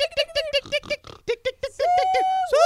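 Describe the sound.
A loud human voice mimics a pig, with a rapid run of short grunting oinks followed by a long, drawn-out call that ends on a rising squeal.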